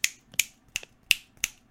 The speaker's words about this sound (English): Can you snap though?